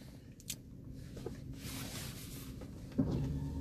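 Soft hissing bursts of a spray bottle misting cleaner onto very dirty windows, with a few faint clicks and knocks between sprays and no voices.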